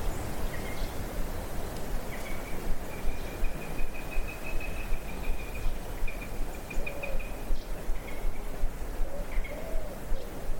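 A sparrowhawk gives rapid, evenly spaced kek notes in a long run, moderately faint over steady outdoor background noise, with a few shorter bursts before and after.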